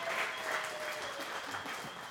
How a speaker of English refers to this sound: Let's give our multimedia people a round of applause and our sound guys. These guys are awesome. Thank you.